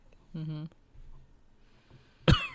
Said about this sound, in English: Excuse me. The fact that you're coughing into the microphone.